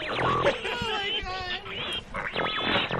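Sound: pig oinking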